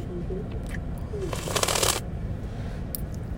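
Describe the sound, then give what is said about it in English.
A single wet, hissy slurp lasting about half a second rises out of a low, steady background hum, with a few faint ticks and clicks scattered around it. “Stop slurping.”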